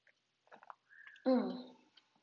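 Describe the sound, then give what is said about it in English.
A few soft, wet mouth clicks and gulps as a person sips water, followed by a brief voiced exhale or sigh after swallowing. “And I think, hold on, yeah, I gotta take a sip of water.”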